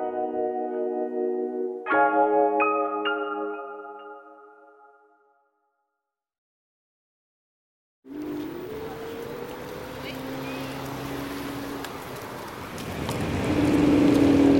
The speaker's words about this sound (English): I am on an electric scooter on the Mall, heading towards Buckingham Palace, dodging traffic